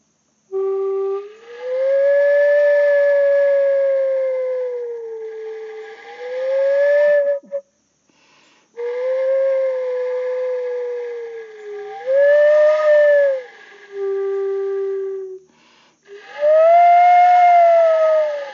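A breathy flute is played to mimic nature sounds, with long, wavering tones that bend and slide in pitch, producing eerie, wind-like calls in several sustained phrases separated by short pauses, with no talking.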